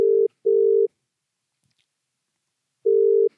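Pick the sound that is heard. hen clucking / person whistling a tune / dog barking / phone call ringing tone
phone call ringing tone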